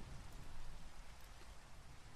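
Steady, dense rain hisses evenly throughout, with a continuous low rumble of thunder underneath that never breaks into a distinct clap. No voices are heard.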